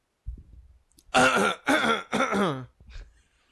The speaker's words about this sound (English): Let me clear my throat.